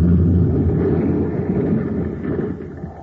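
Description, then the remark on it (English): A tunnel car crashing in the Space Patrol adventure The Caverns of Venus, after an explosion blew up the tunnel entrance: a loud, continuous low rumbling roar with a dense, grinding texture that holds steady for about three seconds before easing slightly at the end, with no voices. “Well, brace yourself. Our tunnel car is going to crash.”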